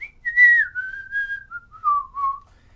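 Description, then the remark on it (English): A person whistles a short, familiar classic tune from a Disney film, a clear pure tone sliding smoothly between a few sustained notes, fairly loud, with no talking. “Does the classic whistling tune everyone knows”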